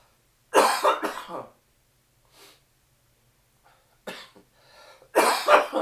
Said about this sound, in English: Hold that thought 1 second. We got a coughing fit coming up here.